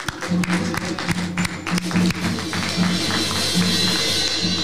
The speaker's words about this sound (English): I'll give a hand clap of praise for that.